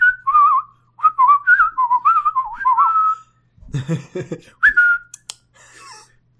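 A thin, wavering whistle drifts up and down in a short melodic run, followed by a brief burst of rustling noise and then one more short whistled note.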